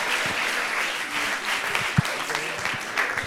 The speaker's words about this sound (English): One more big round of applause for these folks. Y'all are truly a blessed to have these folks here with us.